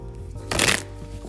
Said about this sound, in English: So, today's message of guidance, I only got one for you, so I'm just going to shuffle the cards and read it.